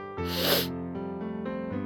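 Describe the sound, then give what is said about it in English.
A single short, breathy sniffle with an airy hiss as a woman brings a hand up to her face, heard over a steady, sustained musical drone that continues after it fades. “You hear just a sniffle, and you watch out of the corner of your eye, one of …'s hands comes up to her face.”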